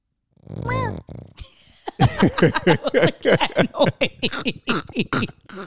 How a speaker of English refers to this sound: That was a cat noise. I call her my little pig.